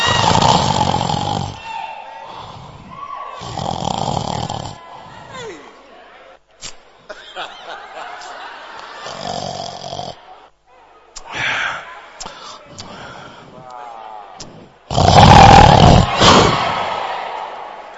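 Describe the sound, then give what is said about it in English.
Loud, rasping human snoring comes in several heavy, forceful bursts with pauses between, the last snores the loudest and longest, with some quieter breathy sounds in between. “Your snoring is also known. It looks like a hippopotamus that has come from the Philippines.”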